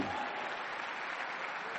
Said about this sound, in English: Oh, if you are clapping, you can clap.